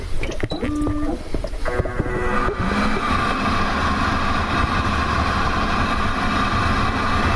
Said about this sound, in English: Now I'm going to run the dryer.